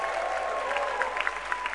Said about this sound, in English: The more you celebrate God for this testimony, the greater your chances of receiving your own. Give Jesus a big clap of praise.